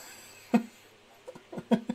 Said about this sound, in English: No, not now. We literally went live as you decided to have a coughing fit.